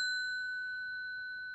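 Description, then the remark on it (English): A single bell strike rings out clearly with a bright, pure tone, then hangs and slowly fades as the ring sustains throughout, with no other sounds around it. “Oh, now we're going to get the bell back out because you have to start and end with bells.”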